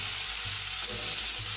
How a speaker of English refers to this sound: I'm not going to toast the cumin seeds for too long. Just giving them a bit of a shake.